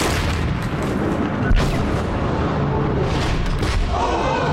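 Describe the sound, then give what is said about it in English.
A massive crashing rumble as an immense mining vessel, a cave hog, bursts through a thick cavern wall and drops 40 feet onto cobblestoned Tweedle Avenue, a dense, loud roar of grinding and crumbling with a heavy thud partway through, continuous and unbroken. “The immense mining vessel burst through the thick cavern wall and dropped 40 feet down onto Tweedle Avenue.”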